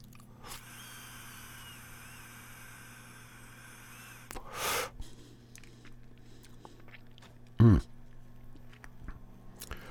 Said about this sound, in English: And it is now just firing up, almost to temperature. And once it hits that magical moment, we'll give this a puff on the vaporizer.